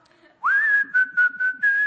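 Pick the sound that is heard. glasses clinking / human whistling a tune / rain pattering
human whistling a tune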